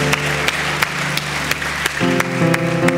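A church crowd claps steadily in a dense, continuous burst of applause for five or six people who raised their hands, with a sustained musical tone running underneath that swells louder toward the end.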